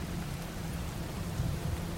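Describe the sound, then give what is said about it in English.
Steady rain hisses evenly throughout in a city on the southern tip of Vancouver Island, with a low rolling rumble of thunder swelling underneath toward the end. No voices, just a continuous wet downpour. “The grandiose French-inspired structure offering an escape from the ever-shifting rain and mist passing through the city.”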